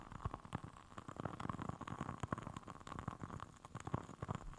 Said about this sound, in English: I'm also grateful for my crackling candle, which I'm going to try to let you hear without burning the microphone. So we'll see if you can hear this.